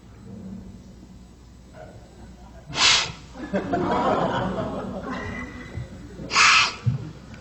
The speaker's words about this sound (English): Achoo.